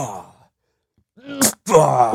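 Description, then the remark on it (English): A single sneeze: a brief rising voiced intake of breath, then a sharp, hissy burst, followed by a loud breathy vocal sound after a short pause. “Bless you.”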